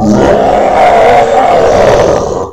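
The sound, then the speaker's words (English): A deep, growling monster roar bellows loudly and steadily for a couple of seconds, unaccompanied, then trails off abruptly at the end. “The roar of the beast Visser 3 had become made the ground shake.”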